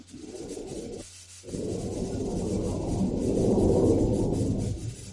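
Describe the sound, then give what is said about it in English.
A jet plane's deep, rumbling roar swells steadily, peaking toward the end before fading slightly, with a brief dip in the noise early on. No one speaks. “What the fuck was that? Was that a jet plane”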